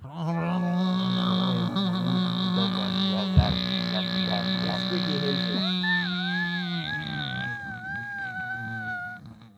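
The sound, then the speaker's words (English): Several voices vocally imitate a garage door closing, a sustained droning hum with rising and falling wavering tones, ending in a wobbly whining pitch that fades out, with no words spoken. “Everybody make the sound of a garage door closing.”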